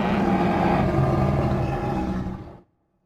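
A loud, sustained bull-like bellowing roar, deep and rumbling, from about 40 minotaurs roaming through a town, several creatures seemingly layered together, holding steady for over two seconds before cutting off abruptly into silence.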